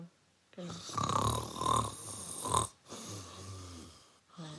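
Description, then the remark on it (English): A person imitates snoring with their voice, making two long, rasping, throaty inhalations followed by a shorter snort, loud, with brief pauses between. “That's snoring.”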